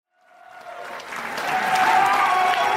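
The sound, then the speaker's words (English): A large crowd roars to life ahead of a number one contender match, screaming, yelling, applause and cheering swelling quickly from silence into a loud, sustained wall of clapping and excited shouting. “Well, you talk about screaming, yelling, and cheering. This crowd's going to be doing a whole lot of that with this next matchup.”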